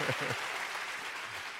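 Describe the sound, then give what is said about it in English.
Steady audience applause fills the space, a dense wash of many hands clapping at moderate volume, with a faint voice or two briefly audible underneath near the start. “You may applaud that. It's over. You might as well applaud it.”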